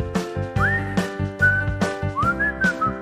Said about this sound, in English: Great whistle.